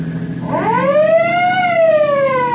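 A car siren wails loudly and close by, sweeping upward in pitch and then slowly sliding back down in one long rising-and-falling cycle over a low rumbling hum.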